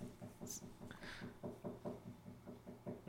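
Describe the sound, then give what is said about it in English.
A dog's tail thumps against a door in a quick, steady rhythm of soft, muffled knocks, like something wagging just on the other side. No one speaks. “Is that the other dog on the other side of the door?”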